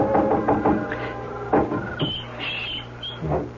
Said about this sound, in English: I doubled back to the trellis in the wisteria and was up on the porch roof in a moment, knocking at Polly's window gently